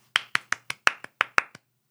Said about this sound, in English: Did you clap your hands? Did you smile?